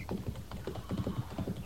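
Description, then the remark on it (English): Horse hooves clip-clop in a steady, fairly quick rhythm as a rider returns on horseback, moderately loud, with no voices over them for the short stretch. “He just propelled himself up on that horse.”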